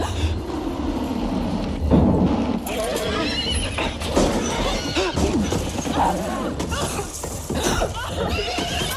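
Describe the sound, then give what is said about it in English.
A horse whinnies loudly several times over clattering hoofbeats and a dense, chaotic wash of noise, with muffled voices mixed in, as a blue family car comes around a bend and crashes into the horse. No clear crash stands out. “I never would have thought that a blue family truckster was going to come around the bend and fucking wreck into a horse.”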